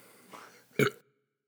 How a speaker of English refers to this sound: Cheers, folks. Yeah, there's a burp coming in. That's good.